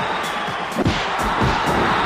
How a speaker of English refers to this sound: Oh, what a power slam by the Bulldog.